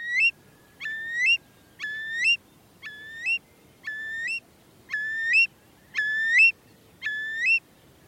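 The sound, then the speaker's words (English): A curlew calls alone in its song and display, recorded by Chris Watson, repeating rising whistled notes about once a second, eight in a row, clear against a faint low background hush. “David, thank you for giving me the opportunity to talk about one of my favourite birds and one of my favourite wildlife sounds, the song and display of a curlew.”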